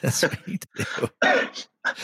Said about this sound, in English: Look, you got the Jamaican cough. The dry cough. I don't. Yeah, it's the Jamaican cough. I had it for a few days.